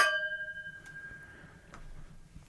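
Glasses clink together once in a toast, a bright ringing chime that fades over about a second, followed by a couple of faint ticks against a quiet background.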